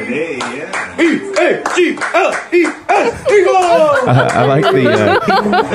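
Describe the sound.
Small, light hand claps tap out a quick, steady rhythm beneath loud, sing-song voices chanting a cheer for the Eagles football team, with some chuckling mixed in toward the end.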